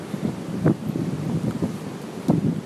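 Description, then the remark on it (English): Strong wind buffets the microphone outdoors, a continuous rumbling roar with irregular low-frequency gusts and thumps, loud throughout with no voices. “It's quite windy, isn't it?”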